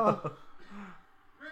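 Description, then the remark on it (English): Two quick, harsh coughs land on a microphone, loud and slightly distorted, followed by quieter voiced sounds trailing off. “Oh, nice cough on the mic.”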